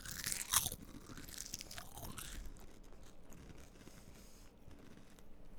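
Crunchy food being chewed right up against the microphone, with a loud bite at the start followed by steady wet crunching and munching, no talking.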